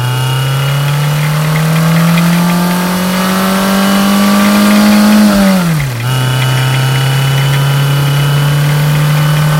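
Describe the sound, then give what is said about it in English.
A car engine drones steadily, its pitch slowly climbing before dipping sharply as if shifting gear, then holding an even hum. No one speaks. “when they have to take Scarlett's car. Fuck. Right. We take yours. It only goes 40 miles an hour.”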